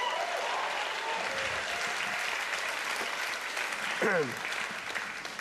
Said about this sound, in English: Now that's 15 claps and there's 1,000 people here. You gonna clap or not?